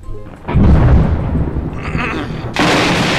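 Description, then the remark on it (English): A dramatic lightning round sound effect: a sudden loud thunderous crack and rumble, followed by a bright crackling burst of static-like noise that holds steady to the end. “play the lightning round sound.”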